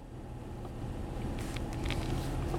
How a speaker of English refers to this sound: We all get stuck in traffic, right? But this is unbelievable. I have lived in this town for 50 plus years. I have never seen traffic like this.